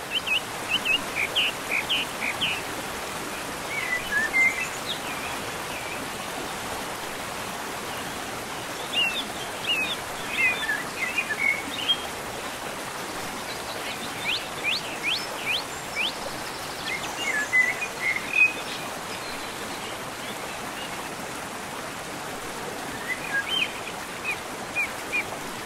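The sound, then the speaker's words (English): Steady rushing water fills the background while small birds chirp and trill in scattered bursts above it, with a faint insect-like buzz and no voices. “Sounds of nature, they're great. The total silence, sounds of water, anything non-artificial.”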